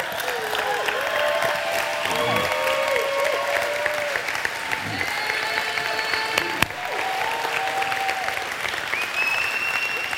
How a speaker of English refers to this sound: If you've ever served in the military or are currently serving in the military, please stand and let us give you a round of applause.